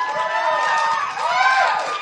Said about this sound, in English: we do so many of these live shows. I'm always just blown away by the crowd reaction.